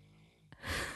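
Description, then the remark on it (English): A woman snoring: a low rumbling breath, then a short click and a loud, rough, noisy inhale, with no talking. “Hey, you're snoring.”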